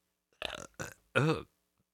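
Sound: burp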